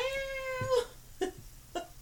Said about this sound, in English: It's like, damn, that cat is like loud as fuck. Holy shit. He's very vocal. Very vocal.